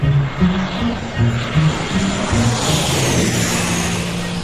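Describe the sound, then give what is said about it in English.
A loud, steady airplane engine drone fills the whole clip, a broad roaring hiss over a low, wavering hum that continues without a break. “What if that plane would have crashed on an island?”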